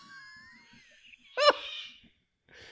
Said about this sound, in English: that's really nice, birdsong.